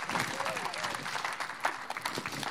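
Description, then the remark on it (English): An audience claps in a steady, dense round of applause honouring a longtime worship leader, a continuous crackling wash of many hands at fairly even loudness, with a few louder individual claps poking through. “So can you give her a huge round of applause, please?”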